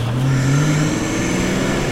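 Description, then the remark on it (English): A truck engine is fired up and runs loud, a low droning hum that swells briefly before settling into a steady rumble, with no voices over it, as someone breathes in the exhaust directly from its tailpipe. “And to prove it, once and for all, I personally will be sucking in on some of this sweet, thick, American-made exhaust.”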